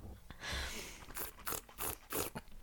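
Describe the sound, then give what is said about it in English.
A slurping sip of a drink followed by several wet, crackly swallowing and mouth sounds in quick succession as a massive mouthful is swallowed, loud, with no talking. “you just swallow that massive mouthful?”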